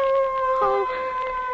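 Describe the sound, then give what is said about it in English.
Dogs howl in a long, steady, overlapping wail that holds its pitch throughout, with a brief wavering cry breaking in partway through. “Those dogs. You set one's spine a-tingling.”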